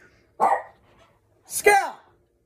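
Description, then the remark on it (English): A dog named Scout lets out two loud, sharp barks about a second apart, with quiet in between and no talking. “I can't believe the dog is barking.”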